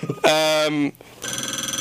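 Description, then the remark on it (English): A loud telephone ring at radio station 91.5 WBLM as a caller phones in: a steady buzzing tone, then a rapid, trilling electronic ring pulsing quickly and evenly, with no talking over it. “Wow, that phone is. Hang on a minute, caller. I will answer it for you.”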